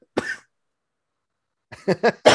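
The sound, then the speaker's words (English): A single sharp cough rings out, followed after a pause by a rapid cluster of three or four harsh coughs, loud and unmuffled, with no talking. “So you guys had to hear me cough a few more times.”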